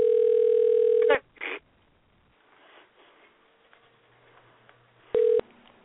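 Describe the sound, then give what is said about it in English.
A loud, steady telephone dial tone drones for about a second as a phone number is dialed, cut off by a short beep of a key press, then a faint hiss before another brief tone burst near the end. “And I almost forgot the phone number.”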